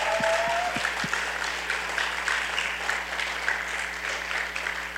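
A church crowd applauds steadily for the woman in charge of the kids' church, dense clapping spread across the whole clip at a fairly even level, with a few low thumps at the start.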